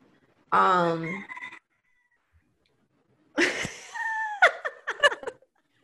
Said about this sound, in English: Yeah, so that's my pet rooster. I love that. He just wanted to make an appearance, okay?